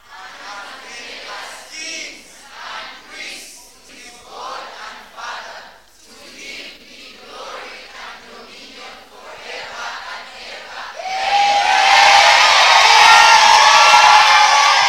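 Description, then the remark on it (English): An audience's mixed voices call out unevenly, then erupt into loud, sustained screaming and cheering that fills the last few seconds, overwhelming. “Those who didn't scream, I forgive you.”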